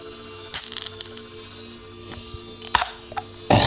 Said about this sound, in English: We can all share a moment together to hydrate, either positively or negatively. I'm going with the negative, but let's bust it open.